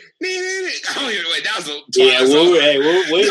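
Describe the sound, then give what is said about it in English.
Someone hums a TV theme tune loudly, holding a steady note before sliding through a wavering melody, pausing briefly, then carrying on with a second phrase. “What song were you about to hum right now?”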